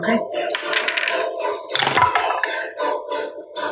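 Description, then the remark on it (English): A short clatter of two dice tumbling across a table, one quick rattling burst in the middle, heard beneath people talking. “Why did I roll 2 dice?”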